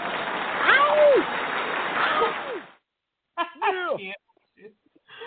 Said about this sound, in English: Let me go ahead and give you a round of applause, sir, because you deserve it.